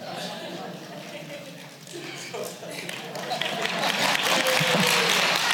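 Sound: audience clapping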